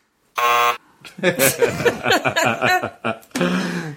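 A loud, harsh quiz buzzer blares for about half a second, then people laugh and chatter before the buzzer sounds again, equally loud and steady.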